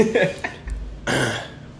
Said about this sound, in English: No, but I keep fucking coughing if I can clear my throat, man.